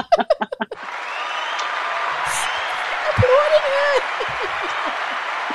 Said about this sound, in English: Ooh, I'm going to put some cheering music. Just give me 2 seconds. It always takes me time to navigate to my cheering, my applause.